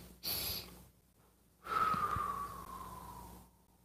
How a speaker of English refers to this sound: Two sniffs and an exhale.